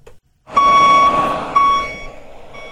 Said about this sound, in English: It's all about the money. It's all about the money truck backing up to the house. And man, do I want to hear that.